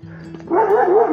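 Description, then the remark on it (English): A dog named Lenny lets out a loud, drawn-out, wavering bark at people in the morning. The bark starts halfway through, following a quiet low hum; no one speaks. “No need to bark at us like, oh, yes.”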